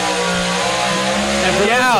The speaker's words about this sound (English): For those of us listening, we've got the tractor pulls going right behind us, so we got a little good background noise going as well.